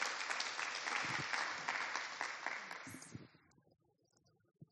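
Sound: round of applause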